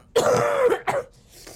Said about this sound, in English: coughs again.